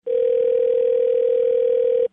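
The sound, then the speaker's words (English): A steady, unbroken telephone dial tone hums at an even, fairly loud level for about two seconds, with no voices over it, after the other caller hung up. “I believe we were disconnected. No, I hung up.”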